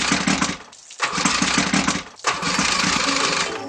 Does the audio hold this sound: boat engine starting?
yes